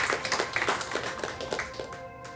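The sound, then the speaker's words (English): An audience breaks into steady clapping, many hands slapping together in a brisk, crackling patter at moderate volume, with no voices, before the applause tapers off and fades out. “Yeah, it deserves an applause.”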